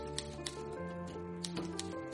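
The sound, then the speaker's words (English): Soft, irregular clacks of an antique typewriter's keys strike every fraction of a second over a steady humming, music-like background, with no voices present. “My parents gave me an antique typewriter, and it was in working order.”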